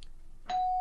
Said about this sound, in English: Do you think they rang the doorbell? I think they did.